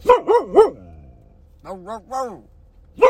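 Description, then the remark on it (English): A dog barks: three quick, loud barks, then a lower, deeper run of three barks, and one more sharp bark at the end. “Someone just bark that deep.”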